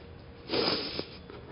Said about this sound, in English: Sorry, I know that sniffling, I find it obnoxious, but when you hear sniffling in microphones, it drives me crazy.